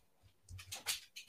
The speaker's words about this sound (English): So, did a dog just walk in? I hear click clacking. Yeah, my dog's over there. I didn't expect my mic to get that, and that's funny. It's adorable.